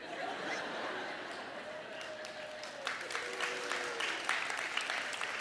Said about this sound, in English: Other than that, because I'm a Chiefs fan, other than that, I was expecting applause.